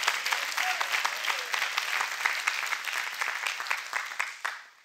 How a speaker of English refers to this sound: If you're going to clap, clap your hand if I'm right about this. Come on.